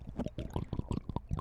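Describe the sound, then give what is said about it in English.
A hippo slurping water: a quick, irregular run of wet, gulping splashes and sucking noises, fairly loud and steady throughout, with no voices. “Oh, listen to him slurp, pal.”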